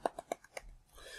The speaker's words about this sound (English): So everyone involved, well done. Golf clap.